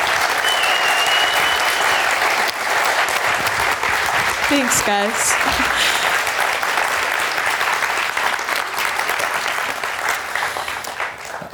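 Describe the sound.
An audience claps steadily and loudly throughout, a dense wash of applause, with a brief spoken thank-you heard partway through before the clapping slowly tapers.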